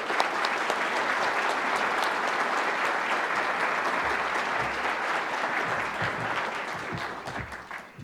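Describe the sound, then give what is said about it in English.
Sustained audience applause welcoming John Brennan to speak at CSIS and the Global Security Forum, a dense, steady wash of many hands clapping at an even loudness for about eight seconds, thinning slightly toward the end, with no speech over it. “And I want to say, would you all please, with your applause, welcome John Brennan.”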